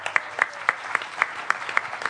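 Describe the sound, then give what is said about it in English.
Audience applause for a woman coming up to tell a story: a steady wash of many hands clapping, with one set of crisp, evenly spaced claps standing out about four times a second. No voices are heard. “Round of applause for the nice lady.”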